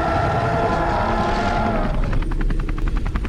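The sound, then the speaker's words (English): A helicopter roars, its rotor thudding in a fast, steady rhythm over a dense engine drone, the blade chop growing sharper and more pulsing toward the end. No one speaks. “It's grabbing hold of the helicopter.”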